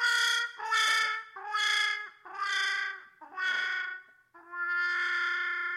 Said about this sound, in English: That bell comes in handy for so many things, like Delta P.